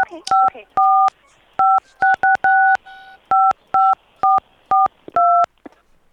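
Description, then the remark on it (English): A quick, uneven run of about a dozen telephone keypad dialing tones, each a short, bright two-note beep, loud with faint hiss between them and no one speaking, as a phone call to an attorney is patched through. “I've got my attorney on the phone, Mr. Danimal. Perhaps he can explain the situation to you. I'll just patch him through.”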